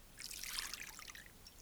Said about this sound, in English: Here's a nice cold Yoo-hoo. Pour a little down my back.